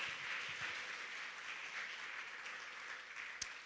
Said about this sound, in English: If you believe that, put your hands together and clap to the Lord with me right now. Thank you, Jesus.